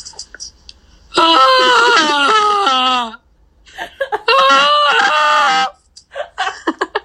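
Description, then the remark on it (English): A person imitates a dinosaur with two long, loud, wavering moans, each a few seconds of strained, pitch-sliding vocalizing separated by a short pause, followed by a few brief breathy sounds. “I'm like, right now I'm actually picturing like a dinosaur sound, like, I can't even picture it.”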